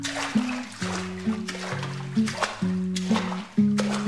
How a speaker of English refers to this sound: Rosemary grabs the business end of a mop and starts pushing the rusty water out of the open door